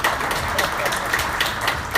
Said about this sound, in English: Can we have a big round of applause for you?